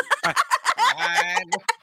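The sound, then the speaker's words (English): A voice imitates a chicken: a quick run of choppy clucks, then a drawn-out nasal squawk, and a few more sharp clucks at the end, all fairly loud with no talk. “And then I go like this, 3, 2, 1, you're a chicken. Now you're a high AF chicken.”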